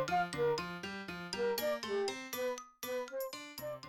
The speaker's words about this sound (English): I do this from time to time when the phone rings, and as it is right now, I just pick it up and we'll see who's on the line.